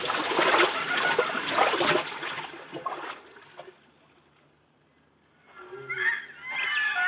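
People wading across a shallow river no deeper than their hips: loud sloshing and splashing for a few seconds fades to quiet, then softer water movement and splashes pick up again near the end.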